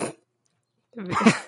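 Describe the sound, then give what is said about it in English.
After a moment of silence, a person lets out a short, rough growling noise, a vocal imitation of a menacing animal growl lasting about half a second. “He's got a really threatening growl, folks.”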